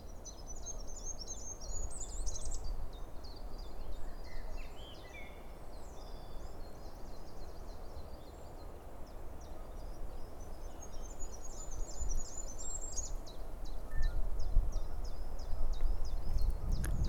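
A goldcrest, a very small bird, repeats its thin, very high spinning song several times alongside the chirping notes of two chiffchaffs, over a steady low rumble of wind and outdoor background noise.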